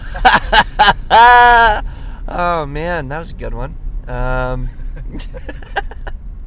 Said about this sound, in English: Yeah, we are in the car ride back, going back to our house,